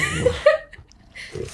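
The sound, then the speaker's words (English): A black bear grunting and sniffling: a couple of short, throaty grunts mixed with breathy snuffles, then a brief pause before another low, rough burst. “Okay, so you kind of get the grunting, the sniffling.”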